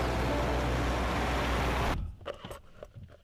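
Loud, steady road and traffic roar suddenly cuts off to near quiet as a man gets into his car, a Tesla in an advert, as if a car door shut, followed by a few soft interior thumps and rustles.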